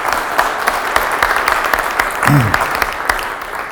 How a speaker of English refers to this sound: Yeah, great. Well, thank you very much. Okay, round of applause.